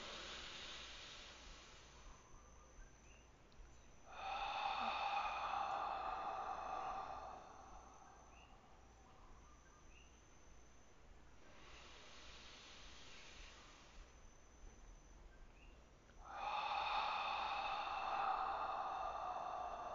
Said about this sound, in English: And again, inhaling. Exhaling. Really enjoy your breath, enjoy the taste, enjoy the smell, enjoy the sensation of breathing.